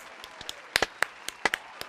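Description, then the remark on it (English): A brief, sparse round of applause for the actors: a handful of sharp, irregular hand claps from a small group, moderately loud, with no one speaking over them. “Let's give them a quick round of applause.”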